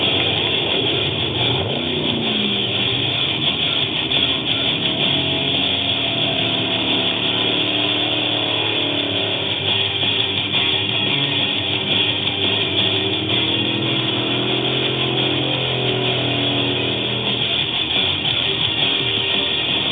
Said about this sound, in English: Who's going to be the last man standing? Trophy trucks are on the final stretch of what has been a brutal battle for first place here in the San Felipe 250.